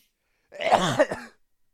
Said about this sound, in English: I get a sneeze.